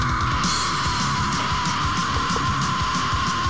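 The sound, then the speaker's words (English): A sustained, harsh scream, about 30 seconds long at the start of a metal song, holds steadily throughout, loud, over a dense wall of distorted instruments and pounding drums, with no break or drop in intensity. “Because it's got literally a 30-second scream at the beginning of the song.”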